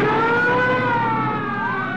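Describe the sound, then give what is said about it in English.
Police car sirens wail continuously, their pitch sliding and overlapping as several units sound at once, loud over a steady background of engine and road noise. “what's that? Police cars.”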